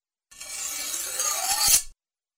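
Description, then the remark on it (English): A harsh, raspy slashing sound effect for the slashes in a web address, like a blade being drawn quickly, lasting about a second and a half and building to a sharper cutting edge at the end before stopping abruptly. “And how about a slashing or cutting sound for the slashes?”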